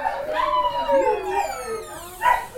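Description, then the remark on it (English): Several dogs recovering in a veterinary ward howl together in long, wavering, siren-like wails that rise and fall, overlapping for a couple of seconds, moderately loud, with one sharper yelp near the end. “We're going into the room with loads of dogs.”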